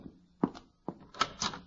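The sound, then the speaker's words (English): Four firm knocks on a front door, spaced unevenly over under two seconds, each a short hollow thud with a bright edge, with no voices. “Oh, there he is. Shall I go to the door?”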